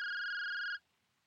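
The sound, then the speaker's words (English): A cell phone rings with one steady electronic tone lasting under a second, clear, then cuts off abruptly into near silence. No one speaks. “He was just about to reach for the paperback when his cell phone rang.”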